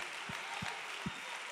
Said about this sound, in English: Come on, let's clap our hands and praise him again.